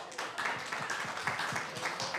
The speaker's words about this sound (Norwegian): Vi gir dem en klapp.